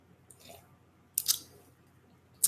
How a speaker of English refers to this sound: All right. Hold on. Let me sip some more coffee.